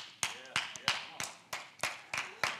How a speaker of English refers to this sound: Two people, three people, okay, all right. I'm going to get y'all all clapping before we finish, okay?